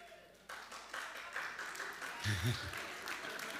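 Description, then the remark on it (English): A man clapping his hands in a quick, steady run of sharp claps that starts abruptly and keeps going for several seconds at a fairly loud level, with a brief low voice briefly underneath. “Was that a guy clapping like that?”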